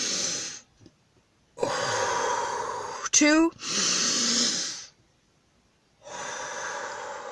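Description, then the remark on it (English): Long, forceful breaths drawn in and pushed out in loud, airy bursts during a breathing exercise to expand the diaphragm, separated by short pauses. A voice briefly counts between them. “Let's do some breathing exercises to expand our diaphragm.”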